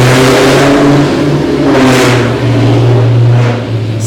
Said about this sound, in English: Sorry, this guy with a huge penis just drove his loud car by. This car going like 20 miles an hour.